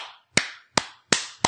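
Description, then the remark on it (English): Four crisp hand claps at a steady, deliberate pace, each sharp smack followed by a short ringing decay. Fairly loud, with no talking. “Slow clap.”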